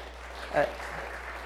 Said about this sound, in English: Yeah, you can clap. That's awesome.